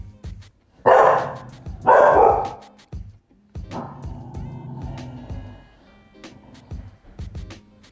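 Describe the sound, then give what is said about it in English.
Two loud barks about a second apart from a big, strong female dog, followed by a longer, lower growling or whining vocalization, with some faint background noise. “She's a strong dog, like her muscles.”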